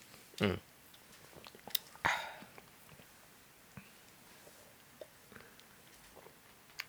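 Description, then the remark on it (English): Quiet mouth sounds of someone sipping beer: two short slurping sips a couple of seconds apart, followed by faint swallowing clicks and gulps against a hushed background. “I have had two sips, but I'm going to have two sips right now just so we can...”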